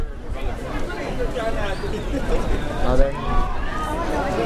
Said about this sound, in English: Pier 39 off Fisherman's Wharf is packed with people, shops, and street performers. On a busy day, you have to wedge yourself through the crowd.